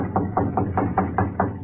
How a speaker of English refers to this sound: I'll knock on the kitchen door. The shades are up, but I don't see nobody. Well, I'll try again.